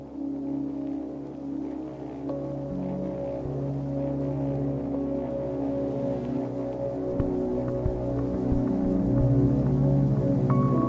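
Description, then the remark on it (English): Experimental ambient music: layered sustained tones and low drones hold steady for the whole stretch, with occasional soft plucked or struck accents and faint higher shimmers drifting over the top. “You can hear this one's a bit more experimental. It's no longer just rain or a constant hum. It's music. It's ambient music, though, isn't it?”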